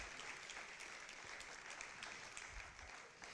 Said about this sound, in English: Well, let's give them one more applause, thanking God for them.